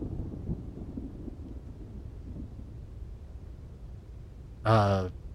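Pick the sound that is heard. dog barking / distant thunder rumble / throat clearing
distant thunder rumble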